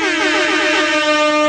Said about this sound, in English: Wait, if you're that stoked, Yeah. I think that calls for some air horn.